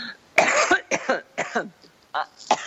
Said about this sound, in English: I'm the one. No, you can't cough. I'm the only one that can cough today.